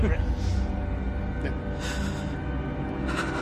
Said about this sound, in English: Harder one, maybe. A bit of deep breathing. Maybe I'll do it again.